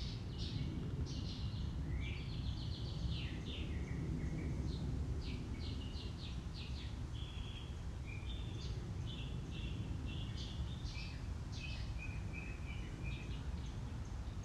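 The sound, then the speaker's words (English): A bird sings a steady stream of bright, high chirps and short warbling phrases throughout, heard outdoors over a constant low rumble of wind or ambient noise. “Or close your eyes because it's easier to close off that input, but you can still open your eyes and focus your awareness on the bird that is singing.”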